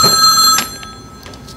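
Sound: telephone bell ringing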